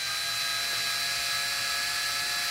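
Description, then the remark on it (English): A branded power drill with a standard chuck, sold with a dildo attachment, runs continuously at a steady speed, its high, whining motor drone filling the whole clip fairly loud, with no voices over it. “But you can use any drill. It's just a standard chuck piece.”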